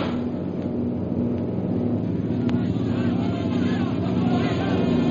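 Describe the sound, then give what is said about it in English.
A low-flying airplane drones steadily overhead, its loud, continuous engine roar filling the scene and swelling slightly toward the end as it draws nearer. “Most High Superior, here comes one plane right at us.”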